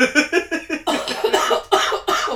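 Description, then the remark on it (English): A woman's loud fit of harsh, raspy coughing after smoking from a pipe, with about eight or nine rapid coughs in a rough, continuous series and no talking. “Yeah, if she's coughing, it's gonna be harsh.”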